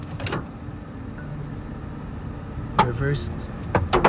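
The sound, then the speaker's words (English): A car engine rumbles low and steady as the driver starts the car and backs it up to move it, with a few sharp mechanical clunks and brief bursts of a voice near the end. “Reversing the car.”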